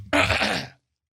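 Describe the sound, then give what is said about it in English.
A single short, raspy throat clearing, fairly loud, lasting just over half a second before dropping into silence. “Okay, yeah, clear your throat.”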